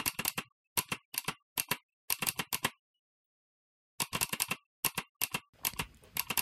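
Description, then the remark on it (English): Mechanical keyboard keys tapped out in Morse-like bursts, crisp clicks in short clusters with a brief silent pause midway, then a faster flurry of taps to finish. No one speaks. “I know one thing in Morse code.”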